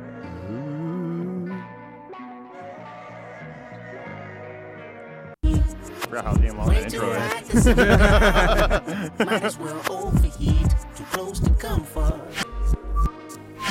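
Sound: hip-hop song playing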